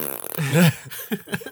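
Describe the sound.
Someone blows a short, buzzy raspberry with their lips to imitate a fart, followed by a few quick voiced sounds, fairly loud.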